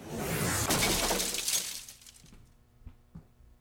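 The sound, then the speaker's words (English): A loud crash of shattering glass and splintering debris bursts for about two seconds as people crash through the cabin top of a boat, then tinkling fragments and a couple of scattered thuds settle as it fades. “Could you stop crashing through the cabin top of my boat, you guys?”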